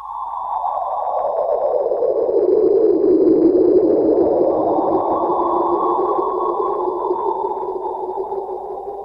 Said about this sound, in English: and researchers have detected 8 echoing black hole binaries in the Milky Way. Then they converted those X-ray echoes into sound waves, and we have the audio of what they reckon it sounds like if you were in a black hole.